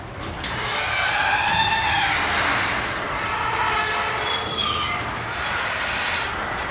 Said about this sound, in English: That is the garage door opening right now.